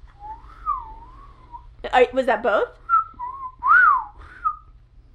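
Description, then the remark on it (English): A person whistles a wavering, mid-pitched inhaling whistle, briefly interrupted by a short spoken question, then resumes with a few more whistled notes, including a clear rising-and-falling swoop. “Sounds like you just reversed the whistle.”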